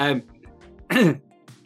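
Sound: cough and throat clearing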